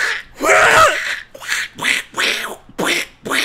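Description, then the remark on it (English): A voice imitates Donald Duck, producing a series of raspy, buzzy quacking bursts, one long and several shorter ones in an uneven rhythm, fairly loud. “I'm turning into Donald Duck!”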